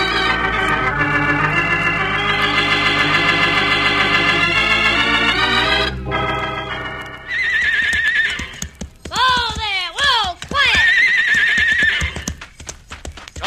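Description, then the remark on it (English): Harnessed horses neigh loudly, with several shrill whinnies falling in pitch near the end, while hooves keep up a steady clip-clop throughout. “Well, the horses are harnessed, the wagon's loaded.”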